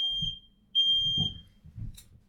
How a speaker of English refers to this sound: I think that my fire alarm's going off. Hang on. Just bear with me just a quick second, everyone.